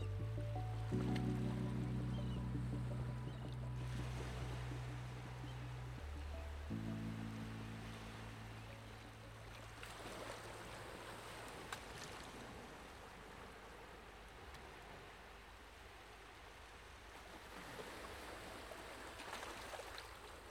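Steady bubbling and gurgling water of a round bath filled with hot water and thousands of bubbles, continuous, with soft drips and splashes, layered over a low sustained droning tone that shifts pitch partway through.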